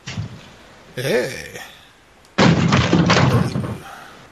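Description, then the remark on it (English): A shout rings out, then loud banging on a room door erupts in a rapid series of heavy thuds lasting over a second before fading. “Hey. Open the door.”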